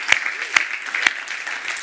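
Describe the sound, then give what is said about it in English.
An audience at Icon Church applauding to welcome everyone across its campuses during a live-streamed service: dense, steady clapping with a bright hiss-like texture, punctuated by a few sharper, louder claps standing out from the crowd's continuous patter. “Come on, I know we've applauded, but we just say, welcome home.”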